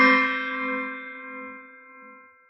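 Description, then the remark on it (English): A small tabletop therapy gong, used for a breathing meditation exercise, is tapped once, giving a bright metallic strike that rings on with layered shimmering tones and fades slowly over a couple of seconds, with no talking. “It's a little tabletop therapy gong that we have, and we use it for another breathing exercise.”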